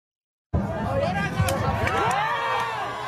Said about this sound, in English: There goes the American flag, for those of you listening. We're pulling it down. And again. And another one. And the crowd is cheering.